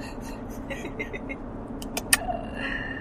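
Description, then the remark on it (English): Steady low rumble of road traffic passing outside, with a brief sharp click near the end and faint background voices. “She likes, she's watching traffic.”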